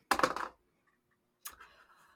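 A short rattle of dice shaken together, a brief pause, then a lighter clatter as they tumble and settle on a hard surface. No voices.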